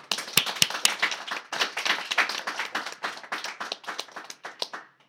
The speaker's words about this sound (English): If we could just share in a round of applause together today.